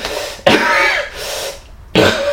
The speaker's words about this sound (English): You hear more of that coughing, snarling, and wheezing.